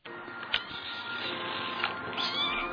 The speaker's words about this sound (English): Is this just the first cat you found on YouTube? No, I found two cats meowing.